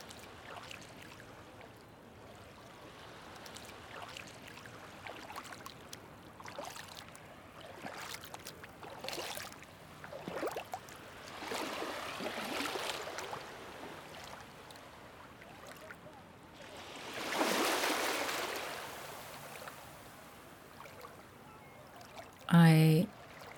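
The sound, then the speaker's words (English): Sea water laps and washes in irregular soft surges, swelling into a fuller rush of water before easing, with a brief louder knock right at the end. “I feel very attuned with the sea, and I thank you for that, because I live by the sea and I don't always tune into that feeling.”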